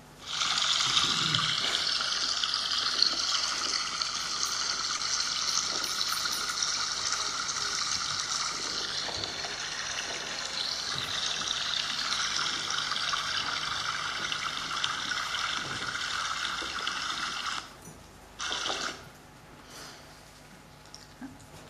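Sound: flowing stream water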